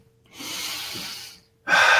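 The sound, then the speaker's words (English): Deep breathing: one long, airy inhale lasting about a second, a brief pause, then a second louder, harsher breath starting. No talking. “Take 3 deep breaths right now even and test it out.”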